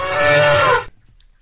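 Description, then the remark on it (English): A person imitates an elephant with one loud, drawn-out trumpeting call lasting under a second. The call is rich in harmonics and slides slightly downward before cutting off abruptly into near silence. “Elephant noise.”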